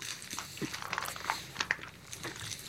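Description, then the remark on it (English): Crisp crunching and chewing as someone bites into a Crunch bar, with irregular sharp crackles over a couple of seconds and no talking. “I'm taking a damn Crunch Bar.”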